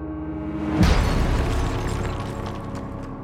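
A heavy, booming crash as church bells, loosed from their frames by fire, fall through the belfry of a burning church and hit the stone floor: one sudden loud impact followed by a long, rumbling metallic ring that slowly fades.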